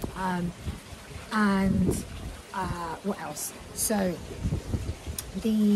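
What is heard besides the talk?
wind outdoors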